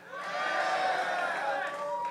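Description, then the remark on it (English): An audience cheers yes together, voting for Roberto Martinez as the next US manager, in a steady, loud burst of many overlapping voices that holds for about two seconds before easing slightly at the end. “If you would like Roberto Martinez, cheer yes.”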